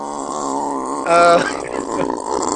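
A long, wavering fart noise, close and continuous, with a louder squeaky burst partway through before it trails off into a rumbling flutter. No one talks over it.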